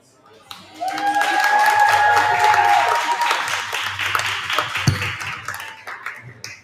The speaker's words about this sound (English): Now, I think this is the most cheering that we've had here without having to ask anybody to show some love. Y'all show each other love all the time.